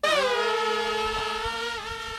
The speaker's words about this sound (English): How crazy that thing can go 200 miles an hour. Is that the fastest drone? What a shitty sound that is. That's wild. It sounds like death.